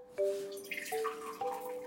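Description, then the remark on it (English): Water pours into a liquid measuring cup with a rising, bubbly gurgle, the pitch climbing as it fills; fairly clear, with no talking. A quarter cup of filtered or distilled water is being measured out. “So in order to do so, we are going to measure a quarter cup of filtered or distilled water in a liquid measuring cup and heat it up in the microwave until it's steaming, which might take about 1 to 1.5 minutes.”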